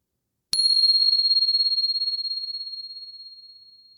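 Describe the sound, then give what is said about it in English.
A meditation bell is struck once at the end of a meditation practice and rings out with a clear, high, bright tone that sustains and slowly fades over several seconds, alone in otherwise silent surroundings. “And here comes the bell.”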